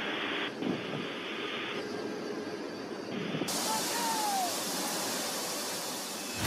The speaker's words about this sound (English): You're listening to Static Line Jumps, paratroopers from the 82nd Airborne in a C-17